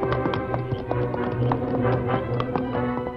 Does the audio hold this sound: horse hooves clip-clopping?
yes